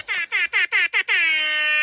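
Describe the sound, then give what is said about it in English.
A loud DJ air horn, set off by accident, fires five quick blasts in a row, then holds one long sustained blare to the end, bright and brassy with no voices over it. “I have my own DJ air horn.”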